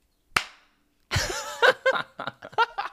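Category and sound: human body sound, two hand claps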